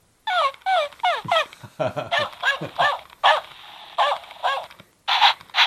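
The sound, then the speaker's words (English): A Bernese mountain dog makes a rapid string of short, whiny yelps and yodel-like howls with rising and falling pitch, fairly loud, then a few longer, drawn-out calls. No one speaks. “Stanley's a Bernese mountain dog.”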